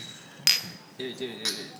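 Two bright glass clinks about a second apart, each leaving a thin high ring, as glasses touch in a toast; a voice murmurs briefly between them.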